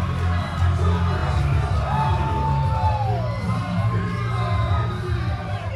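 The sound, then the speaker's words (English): A wrestling crowd at an SHW event cheers loudly and continuously as Cody Rhodes appears, a dense roar of many voices with whoops and yells rising above it, steady in volume throughout. “Listen to this crowd.”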